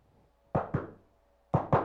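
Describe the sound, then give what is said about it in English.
A doorman raps on a door in two quick double knocks separated by a short pause, four solid thuds in all, with no voices around them. “How would the doorman knock?”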